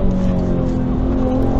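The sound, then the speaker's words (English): A beefy turbocharged V6 engine of a Ford Taurus police car roars loud, holding a steady, sustained growl through the whole short stretch with a slight rough rumble underneath, as it pushes hard in a car chase. “It's a V6 turbocharged V6. But that's a beefy sounding V6.”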